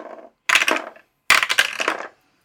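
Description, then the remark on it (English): Two bursts of hard clattering as dice are rolled and tumble across a table during a tabletop role-playing game, each lasting about half a second with a brief pause between, fairly loud. “Let's roll some dice to talk more about it.”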